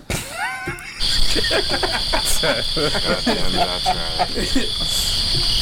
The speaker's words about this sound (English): Cue the crickets.